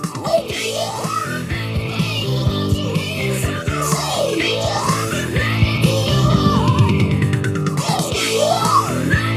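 A strained, very high male rock vocal wails close to a scream over loud, dense band music with swirling, phased guitars and steady drums, sustained throughout.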